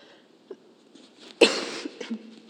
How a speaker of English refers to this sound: Sorry about that. I am allergic to the whole world right now with the pollen. So I will try not to cough on you guys too much or sneeze.